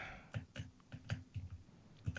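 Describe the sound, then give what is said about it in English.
Typing on a computer keyboard picked up by an unmuted microphone, a string of quick irregular clicks and taps with short pauses between bursts, fairly quiet with no voices. “We got clicking in the background. Someone's typing.”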